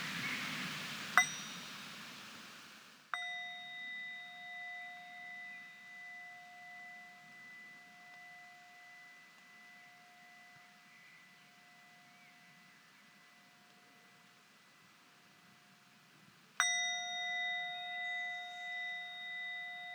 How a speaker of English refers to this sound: Let's listen to three sounds of the bell as well. And really, with the bell, it's like we come back to our breath, coming back into our body and into the present moment.